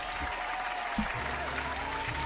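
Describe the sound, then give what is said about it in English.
A steady burst of applause from a group, dense overlapping claps filling the whole moment with an even, bright crackle and no voices rising above it. “Fire. Claps.”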